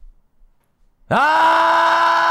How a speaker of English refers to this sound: Have a yell for us.